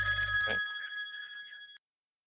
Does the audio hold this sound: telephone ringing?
yes